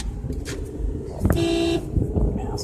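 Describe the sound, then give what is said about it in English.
A single car horn blast of about half a second sounds over low, rumbling road noise from inside a moving car in traffic in Arizona, clear. “I'm in the car. These people in Arizona don't know how to drive.”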